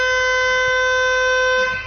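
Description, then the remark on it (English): A loud end-of-match siren at a football ground blares as a single steady, horn-like tone, holding one unwavering pitch for nearly two seconds before it begins to fade, with a low rumble underneath, ending the last quarter of a match involving Sydney. “And fortunately for everyone, not to mention us, there's the siren.”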